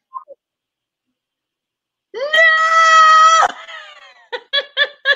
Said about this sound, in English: Wait a minute. She's screaming again.